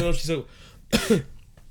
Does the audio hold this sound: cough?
yes